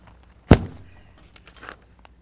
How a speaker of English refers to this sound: I'm going to pray. I'm going to zip my Bible shut.